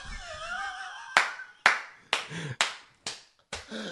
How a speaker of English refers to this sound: That's not me clapping, that's the seals, obviously.